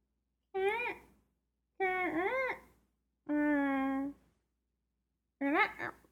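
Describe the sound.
A voice imitates a squeaky faucet with four separate high, whiny squeals that bend up and down in pitch, the third one held steadier, with short pauses between them.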